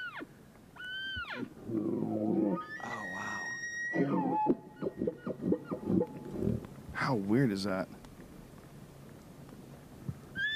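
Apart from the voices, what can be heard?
elk call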